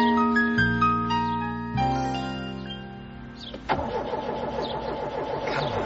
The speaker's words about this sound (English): I'm trying, Robin, but the car won't start.